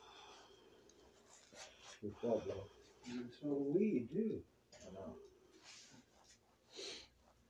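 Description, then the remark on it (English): Someone coughs in two short rough clusters, a few harsh bursts close together, followed by quieter breathy throat noises. “Now I'm coughing again.”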